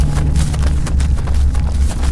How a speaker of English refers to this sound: Whoever it was behind him had heavy footsteps.